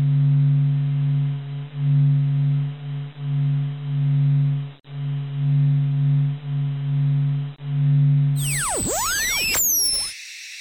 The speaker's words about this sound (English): On the topic of white noise, this sound is the closest I could find on NASA's website to the stereotypical hum of the emptiness of space. It sounds almost like a Tibetan singing bowl, a constant relaxing hum that I can almost fall asleep to.